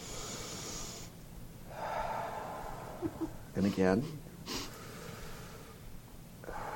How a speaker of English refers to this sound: I'm going to do my box breathing.